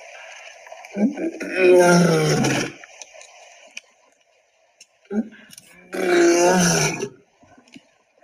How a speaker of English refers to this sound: But before you go, can I show you there's a recording of a lion that you could translate for me. So this is a lion roaring.